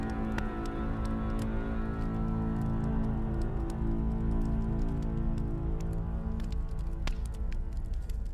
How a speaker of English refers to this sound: So, the rain is continuing, and it's sort of hard to tell how dark it's getting, but it's getting very dark outside.